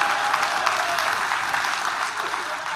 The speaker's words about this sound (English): Thanks. A small hand clap for my lovely assistant in the front row.